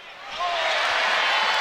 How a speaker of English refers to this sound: They're cheering because Fielder just jammed on the Marquette walk-ons. But I understand it. They haven't had much to cheer about.